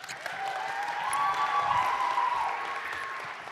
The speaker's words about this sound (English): Let's give B another big round of applause.